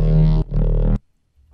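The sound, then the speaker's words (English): A low, buzzy synth with subtle asymmetrical distortion, using a pre-high-pass filter and the mix at 50, plays two sustained notes, dense with gritty harmonics, then cuts to silence before another tone begins to swell in. “Very subtle. Asymmetrical distortion.”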